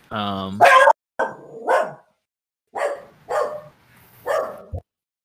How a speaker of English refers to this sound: A dog? And well, the dog is...